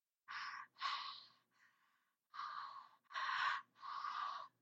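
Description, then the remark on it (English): Breathing close to the microphone, captured by a recorder at the Watt and Tarbell Mortuary in Tombstone, with about five loud, airy breaths in an uneven rhythm and one fainter breath between them. It sounds like a child, and no one speaks. “Early on, not during the investigation, my recorder captured what sounded like to me that of a child breathing.”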